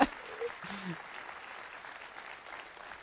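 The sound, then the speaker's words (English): A church audience claps for a departing worship pastor in steady, dense applause that holds at an even level for about three seconds, with a brief murmur of voices blended into the clapping early on. “Go ahead and clap for them.”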